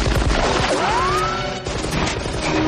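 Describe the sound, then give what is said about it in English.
Loud, rapid machine gun fire rattles off in a dense, continuous burst, harsh, with a brief rising whine cutting through the middle of the barrage. “when they introduce Carl's machine gun, it's loud as hell”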